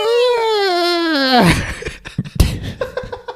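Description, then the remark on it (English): A person's voice mimics a horse whinnying: a loud, quavering tone that wobbles and slides downward for over a second, then breaks into breathy, choppy bursts like snorts or laughter. “Just weighing, what are they, whinnying and neighing?”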